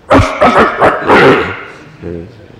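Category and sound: vocal imitation, voice imitating dogs barking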